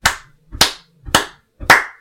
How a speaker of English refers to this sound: Gray and white-haired men and women surrounded the family and began delightedly clapping to the beat.